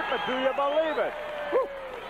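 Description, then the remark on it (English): A wrestling crowd cheers happily in a steady, dense roar, with several voices rising above it in short excited shouts and whoops, loudest around the middle and again near the end. “That's the crowd's like happy, by the way.”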